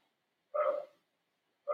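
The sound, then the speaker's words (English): A single sharp dog bark rings out, fairly faint, followed after a short pause by the start of another bark at the very end; no one speaks. “I hear a dog barking.”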